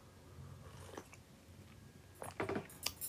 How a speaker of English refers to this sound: ooh, and I sip.